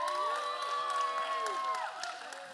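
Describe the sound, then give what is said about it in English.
A crowd applauds and cheers steadily, with dense clapping mixed with high whoops and shouted voices, holding a strong, even level throughout and easing slightly near the end. “You got a bigger applause than I got, so except for your bro.”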